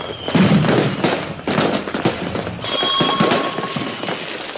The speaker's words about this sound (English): All right, I'm going to light fireworks.